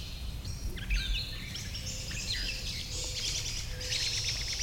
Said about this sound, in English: We're hearing birds right over our heads.